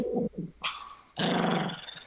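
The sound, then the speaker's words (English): A dog growls and grumbles in a few short, rough bursts, the last one louder and longer, with no talking. “So no, he's not a fan of the bird.”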